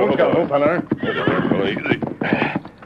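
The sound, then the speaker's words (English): Horses whinny loudly over a few seconds, with clopping hooves settling as the Lone Ranger and Tonto pull their horses to a halt early in the morning in Red Rock Canyon near Clemens and Buena Vista. “Early the next morning in Red Rock Canyon near Clemens and Buena Vista, the Lone Ranger and Tonto pulled their horses to a halt.”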